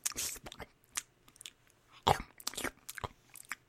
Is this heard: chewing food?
yes